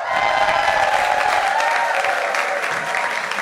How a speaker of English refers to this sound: And finally, a vision in peacock plumery. Cheer now.